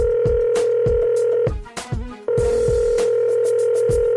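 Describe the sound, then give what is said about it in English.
A steady telephone tone hums with quick rhythmic electronic beeps of dialing layered over it as someone places a phone call to a crypto information line, briefly cutting out midway before resuming, clear with no one speaking. “I'm going to get on the phone here and call CryptoPhone”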